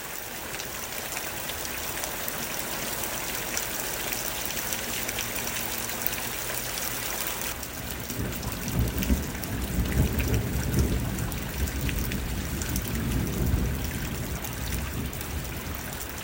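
Steady heavy rain hisses throughout, recorded near a singer's boyhood home, and about halfway through a deep rumble of thunder rolls in and swells, lingering low beneath the downpour before easing off. No voices.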